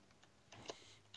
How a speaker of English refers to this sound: You can hear it. He's cheating. Sounds like an old school damn keyboard. It's a gaming keyboard.